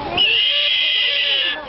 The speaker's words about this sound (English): there is also the eastern screech owl in this area. And I don't know if y'all have you guys ever heard this animal before? No. Yes. Are you going to cut it in? Let's see that. I'll cut it in. Okay. Here's what it sounds like.